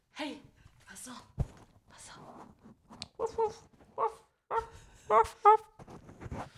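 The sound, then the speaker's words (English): A very small dog named Jackson sniffs in a series of short, breathy puffs, with a couple of faint high whimpers near the end. “I got some sniffing sounds, I think.”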